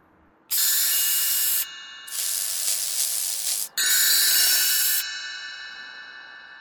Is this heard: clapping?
no